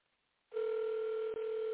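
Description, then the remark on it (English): A steady electronic telephone ringback tone from a call to a woman starts after a brief quiet moment and holds evenly and clearly, with no one speaking. “And she, let me see if she answered the phone.”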